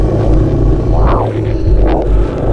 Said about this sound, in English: I've recorded this sound. This is something I found inside of me. A heartbeat.